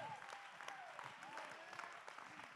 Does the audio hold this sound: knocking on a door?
no